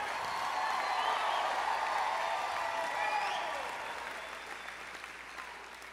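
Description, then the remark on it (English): An audience bursts into loud, sustained applause mixed with cheering and shouts, giving a 'lightning praise'; a dense wash of clapping that holds steady, then gradually fades toward the end. “Then give him a lightning praise right there.”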